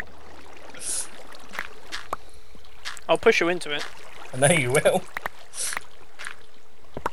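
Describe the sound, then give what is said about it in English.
Steady flowing water runs as a soft, continuous wash in the background, with a few brief splashy bursts, while two people exchange short lines of speech over it. “Okay, there's lots of water here.”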